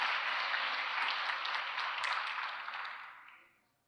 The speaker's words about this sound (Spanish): Un aplauso a esos hombres que estaban aquí hoy.